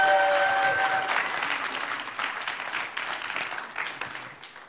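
A crowd applauds steadily, dense clapping that starts loud and slowly tapers off over a few seconds, with a brief sustained tone sounding at the very start.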